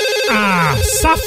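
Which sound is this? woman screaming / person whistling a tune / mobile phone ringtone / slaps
mobile phone ringtone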